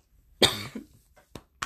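A single forceful cough with a rough, raspy tail, followed by two quick, softer breathy bursts, like small follow-up coughs or throat sounds.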